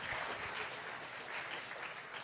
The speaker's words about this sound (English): I'll clap that up.